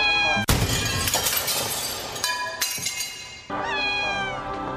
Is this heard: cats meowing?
yes